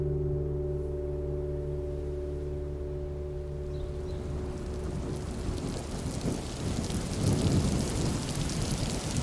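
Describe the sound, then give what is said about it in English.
A thunderstorm builds as steady rain hisses and deep thunder rumbles swell. A low droning hum at the start fades beneath the growing downpour. “I went classical for a thunderstorm.”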